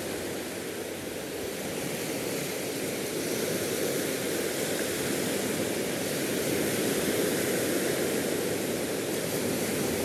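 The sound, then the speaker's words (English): A steady, continuous roar of sea waves washing onto the shore, a dense rushing hiss with no distinct individual crashes, fairly loud and unbroken throughout, with no voices. “So here I am at the sea, watching the waves break over and over, just like me.”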